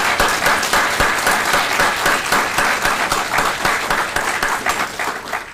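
A steady round of applause from an audience at a feast, thanking the helpers for their work, many hands clapping in a dense, sustained patter at an even loudness throughout, with no voices standing out.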